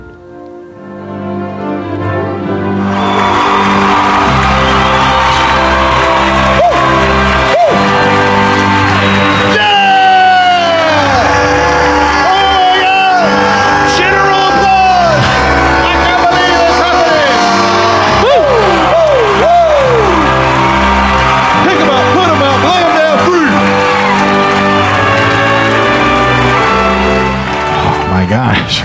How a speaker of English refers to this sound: So, I want you to get out there, and I want you to fucking scream your fucking lungs out. Be as loud as you can, because that's what it takes now.